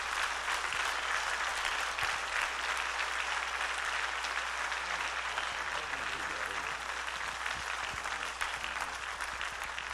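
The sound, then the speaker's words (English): An audience at a morning church service applauds a guest speaker, a bishop, as he comes up to speak, steadily for the full ten seconds, a dense, even wash of many hands clapping at a constant loud level, with faint voices murmuring underneath. “Would you give him a hand clap as he comes to speak to us this morning?”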